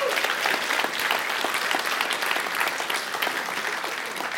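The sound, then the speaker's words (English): A church audience applauds steadily to thank people for their courage to follow Jesus, a dense wash of many hands clapping at an even loudness that holds throughout without any voices rising above it. “Would you thank these folks again for having that courage?”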